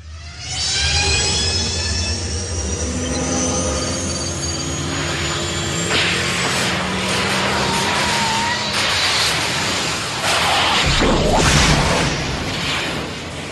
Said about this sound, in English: I would pick the sound of the DeLorean from Back to the Future when it travels through time. The three popping sounds and the whoosh.